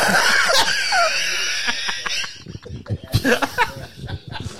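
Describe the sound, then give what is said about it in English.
A voice imitates high-pitched asthmatic wheezing, a strained, squeaky breathy whine sustained for a couple of seconds, followed by choppy chuckling and breathy vocal bursts. “Lung asthma. The Dom DeLuise. You got to get that high pitch.”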